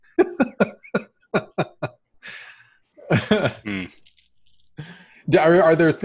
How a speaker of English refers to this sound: coughs and falls out of his chair.